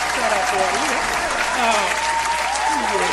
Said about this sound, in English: But look, I got to give some clap.